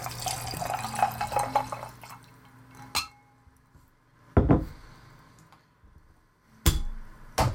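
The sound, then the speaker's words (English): Pendleton whisky glugs briefly into a glass, followed by a few sharp, separate glass clinks spaced over the next several seconds, with no talking. “So, tell me when to stop, because I have a tendency of pouring too much.”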